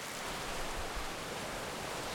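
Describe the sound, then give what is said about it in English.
Heavy rain from an end-of-summer thunderstorm in September, heard outside a house, pours down in a dense, unbroken hiss that stays at a steady level throughout, with a faint low rumble underneath and no voices. “It is September, and it's raining very hard.”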